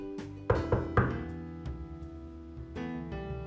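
A young man knocks again, a little more loudly, on the door of a woodcutter's house: three firm, evenly spaced knocks ring out over a sustained, droning musical backdrop, followed by a few softer thuds as the music carries on.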